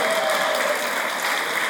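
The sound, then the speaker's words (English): A crowd claps steadily in a dense, continuous wash of applause, fairly loud and sustained throughout with no voices on top. “So, huge round of applause for Chris.”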